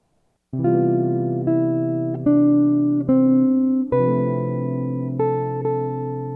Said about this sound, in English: This next example will feature appoggiatures. I start with an appoggiatura, move down four notes in a descending line, and then jump a seventh up to a B against the F major seventh chord, and then resolve to two A's.